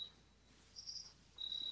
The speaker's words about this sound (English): No, all I can hear is crickets.